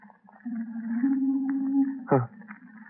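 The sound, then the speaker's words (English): An owl hoots once in a long, low, steady tone lasting over a second, ending with a brief downward-sliding note, moderately loud with no one speaking. “Oh, a bird. An owl. Yes, of course, an owl.”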